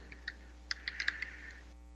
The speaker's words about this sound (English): I am typing to him now.